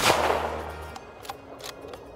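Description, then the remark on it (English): A single suppressed gunshot: a sharp, muffled crack that fades over about a second, followed by a few faint, scattered clicks. No one speaks. “Suppressors, also known as silencers, are the hearing protection of the 21st century sportsman.”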